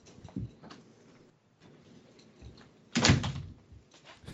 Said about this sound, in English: Oh, he shut the door.